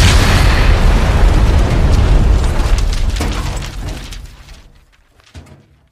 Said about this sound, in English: It's the champ and the tramp, let the bomb blast.